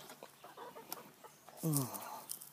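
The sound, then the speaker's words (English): Chickens cluck, soft scattered clucks building to one loud, drawn-out squawking cluck near the end, with faint rustling in the background. “Bye, chickens.”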